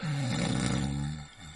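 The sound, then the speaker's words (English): A loud, rasping snore rumbles in one long, throaty breath of a sleeping person, then trails off into a quieter, softer exhale near the end. “I mean, you've had the background noise of random snoring and general sleeping, breathing, and so on.”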